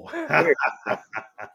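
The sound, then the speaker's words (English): An excited, wound-up puppy yips and whimpers, a longer whiny cry followed by three short, high-pitched yelps in quick succession. “We'll get to meet the little pupper then.”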